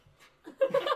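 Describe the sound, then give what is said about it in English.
Someone blows their nose in a short, loud burst: a faint rustle, then a rough, breathy honk with a buzzing nasal tone that swells over the last half second. “I'm sorry, I need to blow my nose.”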